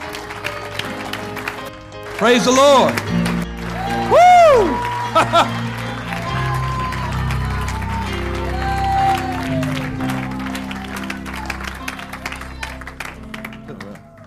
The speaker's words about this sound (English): So let's rejoice and be glad in it. Amen. Give him a hand clap and a shout.